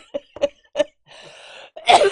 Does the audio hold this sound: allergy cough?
yes